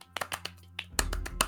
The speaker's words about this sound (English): What is that noise? That's clapping. Golf clap. Okay. Okay. It did sound a bit like something else.